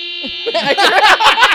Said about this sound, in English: She just gave the wrong buzzer again. Yeah, boy! How do you turn it off? You don't.